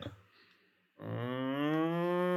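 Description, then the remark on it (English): After a brief quiet pause, a loud, sustained low moo rings out for over a second, a person convincingly imitating a cow with a rich, steady drawn-out tone. “That was pretty good. That's what a cow sounds like.”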